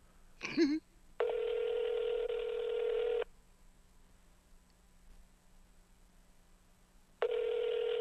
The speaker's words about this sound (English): Could you let the phone ring? I'm letting it ring. Hear it? It's four ringy dingies. I don't think she's going to answer. Five ringy dingies.